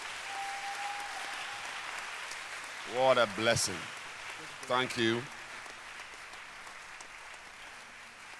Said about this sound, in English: Clap your hands for this wonderful gift of God. Keep clapping your hands. Don't stop clapping.